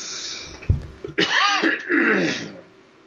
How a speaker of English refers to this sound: I got a cough.